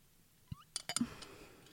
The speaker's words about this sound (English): Hold on, let me drink some water, girl, because I need to breathe.